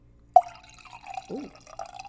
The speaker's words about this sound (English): Let me pour some more wine, y'all. Let me do some ASMRs. ASMR. Hold on.